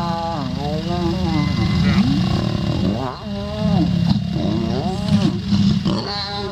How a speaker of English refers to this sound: Now that I play lion mating again there, I want to say lion mating sounds like a severely injured Chewbacca. Like, if Chewbacca... Chewie's down? If Chewie gets hurt or shot and he's, like, he's bleeding out.